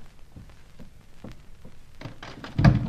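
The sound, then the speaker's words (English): A door is opened and shut: a few soft knocks and rattles of the latch, then a louder, heavy thud as it closes, without any voices. “Well, now, to investigate. Try this door first. Oh, pardon me, girls. Wrong door.”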